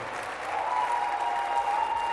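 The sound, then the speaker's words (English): A crowd applauds steadily for a couple of seconds, a dense, continuous wash of many hands clapping at a fairly loud, even level, with no voices standing out. “Yehovah, if you can clap, your story has changed.”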